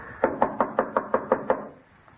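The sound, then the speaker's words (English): A quick, steady series of eight solid knocks on the wooden door of an unlit house whose bell is out of order, evenly spaced, each with a short hollow thud, then it goes quiet. No one speaks. “Oh, it was out of order when I was here. I had to knock.”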